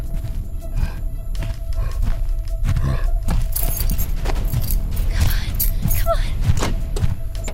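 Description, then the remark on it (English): A set of keys drops to the ground by a Chevy pickup truck with a brief metallic jangle and clatter, amid hurried movement, scuffing and a constant low rumble in the background. “She drops the keys.”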